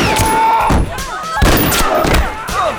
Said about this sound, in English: He hit the first 2 bangers in his sights with relative ease, then dove to the floor and rolled to avoid the wild spray of bullets fired by the others.